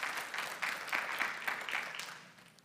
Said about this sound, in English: Women, would you agree that your definition of love is being made to feel safe and protected? Let me hear you clap if that's correct.